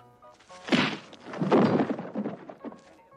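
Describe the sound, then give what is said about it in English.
Heavy punching thuds of someone punching a horse: two loud, dull impacts about a second apart, followed by a flurry of smaller, softer blows that fade out, with a faint steady hum underneath. “punching a horse.”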